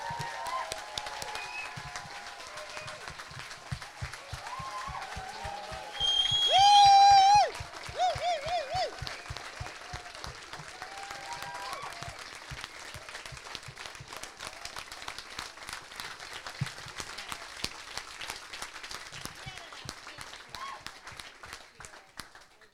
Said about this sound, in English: And I would love just to spend a moment just to honor them with a round of applause. Can we do, would you join me in that?